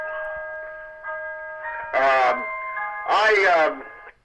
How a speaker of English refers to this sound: That was my clock.